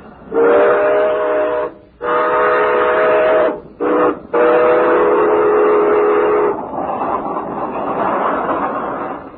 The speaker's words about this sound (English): I think there's a train coming in. I believe you're right.